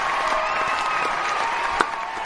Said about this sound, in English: We got some... canned applause for you, Mark. You can't hear it. But keep that rolling, JT, so you can hear it. We want him to feel the love here. Yeah. That's from the live studio audience that is standing behind the studio.